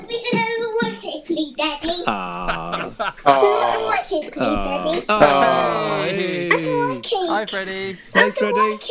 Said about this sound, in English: My son asking for a rice cake.